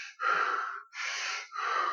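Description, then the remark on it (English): A voice imitates the panicked gasping of a man who has jumped into an ice lake in the Netherlands and lost control of his breathing: three rapid, harsh breaths in quick succession, loud, with no words spoken. “So he jumped in and he found that his breathing went.”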